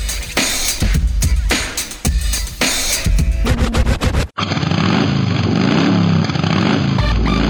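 A loud motorcycle engine roars and revs in choppy bursts, then cuts to a steadier, throaty rumble that holds with no voices.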